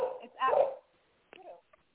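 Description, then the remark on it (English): A dog gives a couple of short, whiny barks and whimpers, a longer yelping cry followed by a brief pause and a quicker, softer whine. “It's doggy.”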